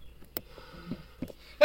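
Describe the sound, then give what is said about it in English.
A short, sharp sneeze bursts out at the very end after a quiet stretch with a faint sniff-like puff early on; the sneeze is loud and abrupt, and no one speaks. “Bless you,”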